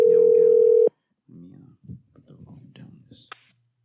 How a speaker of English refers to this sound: Voice call. All right. I'll be dialing now, but